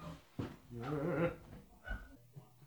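A little dog gives a wavering, nasal whine, rising and falling for about a second, with a few shorter whimpers and soft thumps around it.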